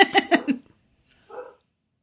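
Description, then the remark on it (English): Dogs bark in a quick cluster of four sharp yaps, then one softer, shorter bark follows after a brief pause. No one speaks. “Dogs are barking. They're wilding out.”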